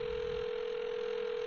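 A steady electronic phone tone hums without a break, like the ringback heard while an outgoing call connects, clear and unaccompanied by voices.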